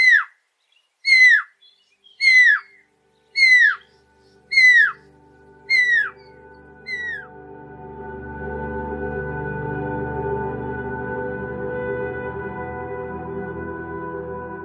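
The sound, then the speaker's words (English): Recorded birdsong played back to animals as a benign sound: seven clear, downward-sliding whistled calls repeat at an even pace, the last ones fading. A steady, rising rumble of background noise then takes over, with no voices. “On the other end of the spectrum, you also want to be sure that you have sounds of something that is going to be completely benign, that the animals will not have to worry about, right?”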